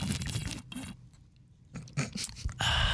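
Someone drinking water: loud, wet slurping and gulping noises in irregular bursts, a short quiet pause midway, then heavier swallowing sounds toward the end, with no talking.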